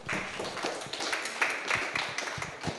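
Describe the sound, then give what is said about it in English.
An audience applauds steadily for about three seconds, a dense, even wash of many hands clapping at once with no single beat standing out and no clear voices above it. “Let's give another round of applause for Mark.”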